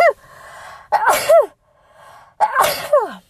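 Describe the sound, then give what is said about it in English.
Two loud sneezes about a second and a half apart, each preceded by a sharp breathy intake, with quiet pauses between and no talking. “Oh, excuse me, I gotta sneeze.”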